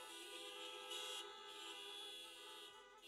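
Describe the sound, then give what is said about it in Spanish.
Several car horns honk together in a steady, overlapping blare that holds for about three seconds, loud and continuous, with no voices over it. “Can you give God a honk today?”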